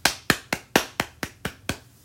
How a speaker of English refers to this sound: So please give yourselves a round. I will clap for you right now.